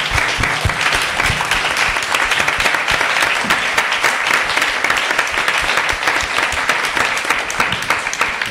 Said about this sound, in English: Oh, wow. Oh, my gosh. Everyone giving a round of applause for the author.